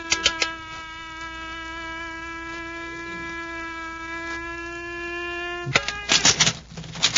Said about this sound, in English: It's an electronic lock on the door. This ring may solve the combination. I'll try it. A few turns of the settings ought to tell the story.